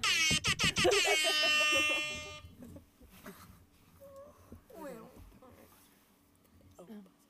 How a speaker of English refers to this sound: Oh, what was that? Did you hear that buzzer? Oh, there it is. There it is. That buzzer beater.